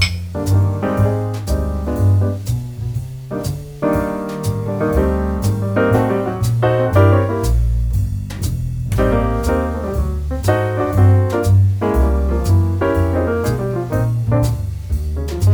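A jazz piano recording plays steadily with rich chords and a walking bass line underneath, crisp percussive attacks punctuating the phrases, full with no one talking.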